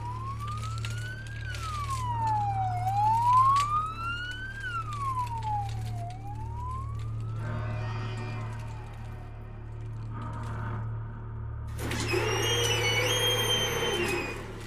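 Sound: approaching emergency vehicle sirens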